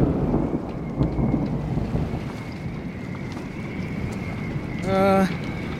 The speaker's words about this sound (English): I mean, how bad can the storm really be, anyway?